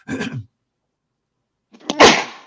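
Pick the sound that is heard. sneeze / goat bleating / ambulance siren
sneeze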